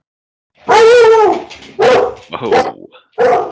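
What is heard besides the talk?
dog barking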